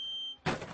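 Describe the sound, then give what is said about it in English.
A Harley Davidson Twinkle phone ringtone: a steady, high electronic tone gives way abruptly to a loud, rough engine-like roar, all within a second, clear with no voices. “It was Harley Davidson Twinkle. That's exactly what it was.”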